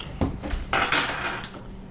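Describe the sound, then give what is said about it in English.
Dice clatter across a hard surface in a short burst of quick, uneven knocks and rattles, loudest in the middle before tapering off, with no one speaking. “Did you just do that because Dave rolled the dice?”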